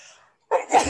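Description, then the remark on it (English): A single sharp sneeze bursts out loudly after a brief quiet pause, preceded by a faint breathy intake. “I'm gonna sneeze. Bless you.”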